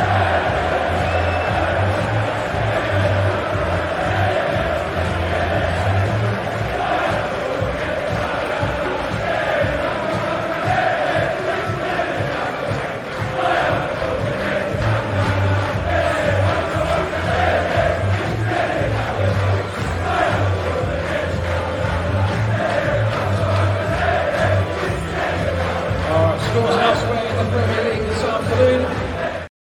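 A large crowd of away football fans chants rhythmically in unison, loud and sustained, with cheering swelling throughout and a steady melodic chant pattern repeating over the roar, as Kai Havertz comes to the far side to applaud them at the final whistle.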